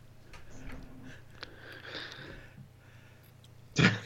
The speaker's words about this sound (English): No, sorry. I felt a sneeze coming on. I thought I could, like, perfectly time it.